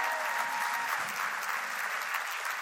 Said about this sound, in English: Let's give our worship team a round of applause. Man, you guys are fire.